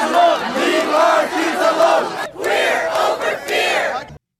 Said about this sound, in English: That was the sound of one group shouting, leave our kids alone, while the other was saying, you know, we're over here. And they could be heard shouting, protect trans kids at time. And they gathered in Winnipeg.